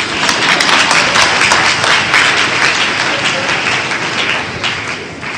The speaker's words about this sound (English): All right, clap for the evangelist.